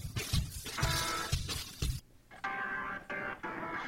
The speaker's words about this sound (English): You ever notice that before? B3 organ. It reminds me of metal.